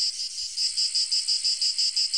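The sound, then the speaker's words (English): A recording of a shrill, cicada-like insect buzz drones steadily, pulsing in a quick, even rhythm. It sounds loud, with no voices or other sounds around it. “That really doesn't sound like the true cicadas.”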